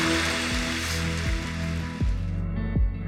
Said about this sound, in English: Come on, church. Can we go ahead and just give every person a round of applause today?